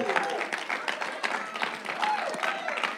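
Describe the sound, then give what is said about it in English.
A church audience claps steadily for a few seconds for people getting baptized, a dense, continuous patter of many hands, with scattered cheers and voices rising over the applause. “Let's give it up.”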